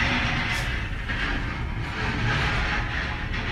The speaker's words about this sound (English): Utility truck, I think, going by. There.